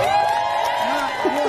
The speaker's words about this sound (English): Clapping for him.